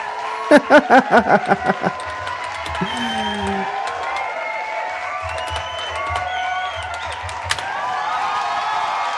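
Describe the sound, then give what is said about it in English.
A round of applause sound effect: a quick run of about eight sharp, loud claps opens, then a steady wash of crowd clapping and cheering carries on to the end. “Like, can we give a round of applause to Antonio Brown for faking a vax card?”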